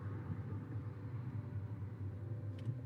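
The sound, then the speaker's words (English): A steady, low engine and road rumble from inside a car creeping along in highway traffic at about 5 miles per hour, a constant drone with no voices and only a brief faint high tick near the end. “you're a type of person who likes the highway noise, because I think maybe you can hear it in this recording, though I'm not wearing my headphones to monitor the sound, because that would be unsafe, even though I am just going 5 miles per hour.”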